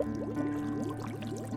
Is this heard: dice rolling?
no